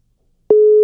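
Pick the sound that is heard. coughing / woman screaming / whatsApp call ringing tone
whatsApp call ringing tone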